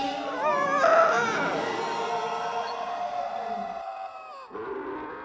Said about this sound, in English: Before you go on too far, is it possible to blend all of the screams together? Yes, I'll do that. Including yours. Right now.